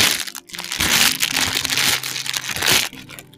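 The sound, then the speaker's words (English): Footsteps crunch through dry leaves at a steady walking pace on a winter day, each step a loud, rustling crackle, with no voices. “It was a very crunchy leaf day in winter, and she came across a bridge.”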